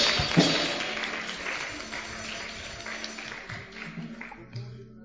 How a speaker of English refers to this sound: Yes. Yes. You're clapping for Jesus.